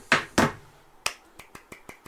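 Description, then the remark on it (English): Hand clapping: two loud, deliberate claps, a short pause, then a run of lighter, evenly spaced claps that gradually trail off. No voices. “Oh my god, I don't need your pity clap.”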